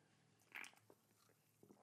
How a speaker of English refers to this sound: You don't open a can of beer. You open a can of La Croix.